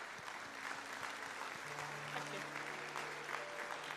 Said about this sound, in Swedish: Ska vi ge henne en varm applåd?